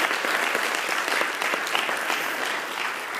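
An audience claps steadily, a dense, even wash of many hands that stays loud and constant for a few seconds with no voices over it.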